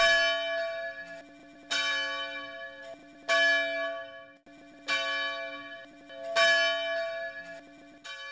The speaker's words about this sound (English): In the early days of the chapel, he tells them, visitors would sometimes ask him, "What's that sound?" as the bell tolled. His response, "It's the voice of Flight 93.